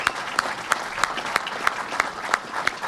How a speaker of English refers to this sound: Thank you, Governor Cuomo. Thank you, thank you, thank you. A round of applause for Governor Cuomo.